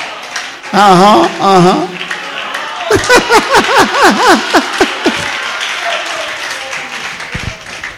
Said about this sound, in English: Can we clap for the brother again?